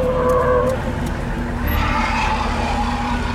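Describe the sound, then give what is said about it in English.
A heavy military truck rumbles, its engine droning steadily as it pulls up on snow-covered ground, with a brief squeal of brakes or tires at the start. “I was about to lash out against the approaching gargoyles when a military truck pulled up behind them.”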